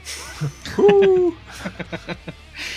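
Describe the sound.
A single high-pitched, owl-like hoot sounds clearly, holding for about half a second with a slight downward slide, followed by a quick run of short, fainter taps.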